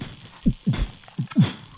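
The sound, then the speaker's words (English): Someone imitates a jingling heartbeat, the beating heart of Christmas: two pairs of low, muffled lub-dub thumps in a steady rhythm, moderately loud, with a faint metallic jingle riding over each beat. “What does that sound like? Like a jingling heartbeat.”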